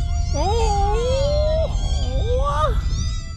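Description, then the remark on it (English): Several kittens meow in overlapping, drawn-out cries, with one long wavering call followed after a brief pause by a shorter rising one, all over a steady low rumbling background. “It's a stampede, all right. A stampede of kittens.”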